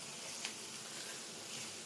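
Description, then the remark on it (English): Cauliflower and dried figs sizzle steadily in a hot pan, a soft, even hiss with a faint crackle and one small pop early on, heard fairly quietly with no talking; the sizzle slows as water from the cauliflower comes out and deglazes the pan. “But you can hear the sizzle already kind of slowed down a little bit.”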